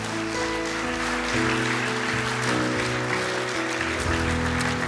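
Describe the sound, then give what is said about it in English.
A church audience claps during a morning service in a dense, steady wash of applause that carries on throughout, with sustained organ or keyboard chords ringing underneath. “If you're glad we're a people of hope, let me hear your hands this morning.”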